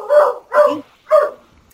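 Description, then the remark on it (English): Three sharp dog barks in quick succession, the first two close together and the third after a short pause, loud with no one talking. “Do we have a dog that would like to join in with the Sammy character?”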